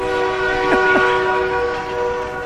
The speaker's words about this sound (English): One away, and here goes the 4 o'clock train.